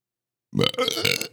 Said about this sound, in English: Oh, bro, really? You're going to burp on the podcast?